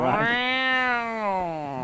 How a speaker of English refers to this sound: You hear this meow from the doorway. What is that noise? A black cat is just watching from the doorway.